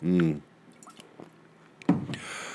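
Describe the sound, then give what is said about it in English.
A short vocal hum, then quiet wet mouth clicks and a single gulp of water, followed by a soft breathy exhale. No words are spoken. “Hang on, I got to get a drink of water.”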